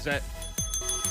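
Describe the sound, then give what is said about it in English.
A hand bell rings with several quick, bright strikes, its high metallic tone lingering between them, while a voice speaks briefly underneath near the start. “I'll get my bell.”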